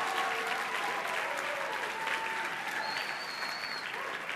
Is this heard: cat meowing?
no